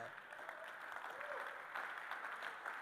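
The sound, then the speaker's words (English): An audience claps steadily, a dense, continuous patter of many hands at an even level for a few seconds with no pauses or voices rising above it. “You're clapping a second house right now.”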